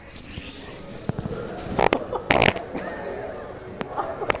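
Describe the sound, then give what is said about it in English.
A few short, raspy fart bursts sputter out in the middle, moderately loud, against a low background hiss with faint sounds of movement around them. “Okay, there's a fart coming up.”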